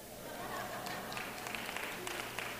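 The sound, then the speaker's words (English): An audience claps briefly, a soft, steady patter of many hands that stays fairly quiet throughout, with a low hum underneath. “You're clapping, but sleeping in at my house is 6:30.”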